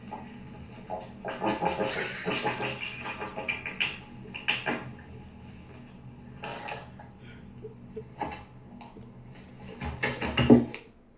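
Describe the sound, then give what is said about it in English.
A duck call blown in a series of raspy, uneven quacking bursts, some short and some drawn out, ending with a louder, sharper blast; no one speaks. “Please do it this if you can blow a duck call better.”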